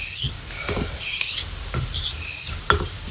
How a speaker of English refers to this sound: That's a razor blade. Oh, my it's goodness. It's the sharpening of a razor blade on a whetstone.